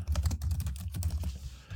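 Rapid, steady typing on a computer keyboard while entering a match pairing, with many quick clicking keystrokes in an irregular rhythm, fairly clear, with no voices.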